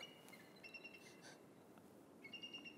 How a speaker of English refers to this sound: that's an eagle, by the way.